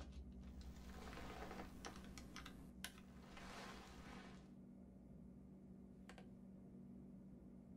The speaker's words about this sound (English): So he could have told us the code. Just keep typing.